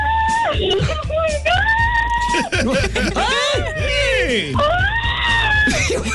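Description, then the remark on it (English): A woman caller to the Keola Show screams excitedly over a phone line at 9:30 in the morning, long high-pitched shrieks rising and falling, loud, with other voices whooping and talking underneath. “You're screaming like you won money.”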